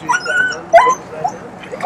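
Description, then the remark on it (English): A dog whimpers in thin, high-pitched whines, two short wavering cries about half a second apart, over a low background murmur. “There's a dog that's been taken hostage.”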